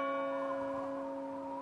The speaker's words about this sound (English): Just then, a distant bell rang out.